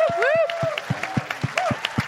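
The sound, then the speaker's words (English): An audience applauds Neil Brennan in steady, rhythmic claps, with high whistles and cheers sliding over the top early on before the clapping carries on alone. “Will you clap for Neil Brennan, who's going to stay?”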